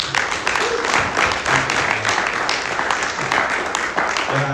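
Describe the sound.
A round of applause from an audience: dense, steady clapping that fills the whole stretch at an even loudness, with faint murmuring voices mixed in beneath it.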